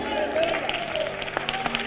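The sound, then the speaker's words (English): A crowd claps its hands in a dense, steady patter of overlapping claps, with a voice talking over it throughout. “Come on, somebody clap their hands.”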